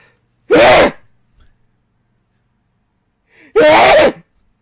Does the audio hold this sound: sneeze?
yes